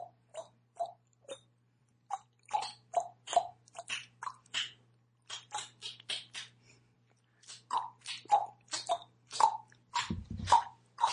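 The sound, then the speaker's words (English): Someone clicks out a simple nursery tune with their tongue, meant as Baa Baa Black Sheep and guessed as Mary Had a Little Lamb. It is a string of sharp, hollow pops at shifting pitches in a halting rhythm, with short pauses between phrases and no talking. “Try to click clack a song and I'll try and figure it out.”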